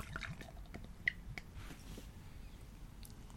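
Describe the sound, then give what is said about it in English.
Lagunitas Lucky 13, a Mondo Large Red Ale of 8.8% alcohol, pours into a glass with a low, gurgling splash and fizzing, sprinkled with small drips and clinks, quiet with no talking. “And the pour?”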